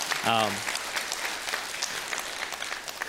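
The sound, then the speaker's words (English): A church audience claps steadily in dense, continuous applause during a service, with a brief voice rising over it at the start before the clapping carries on alone. “Now you can clap, right?”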